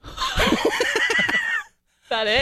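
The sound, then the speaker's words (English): A rubber chicken toy being squeezed squawks in a loud, strained honk that stutters through a series of quick pulses, breaks off briefly, then lets out another shrill squeal. “I shouldn't say anything because I cleaned out a closet this week and I found 4 rubber chickens.”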